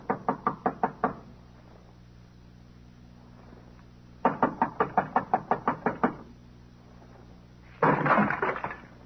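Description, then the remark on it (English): Police knock loudly and rapidly on a door in three bursts of about six to eight raps each, separated by pauses, with a steady low hum underneath. “Come on, open the door. This is the police.”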